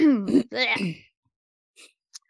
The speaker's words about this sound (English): And I gotta take a drink because my throat is too scratchy to do the outro. I ran out of my drink. I am now just coughing.